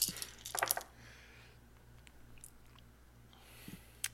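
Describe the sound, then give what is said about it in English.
A handful of dice, rolled for bludgeoning damage in a game, clatters onto a hard surface in a quick burst of rattling clicks, then a few stray taps follow as the dice settle. Fairly quiet, with no talking. “I need lots of dice. Normally I only roll this many dice when I'm playing a wizard.”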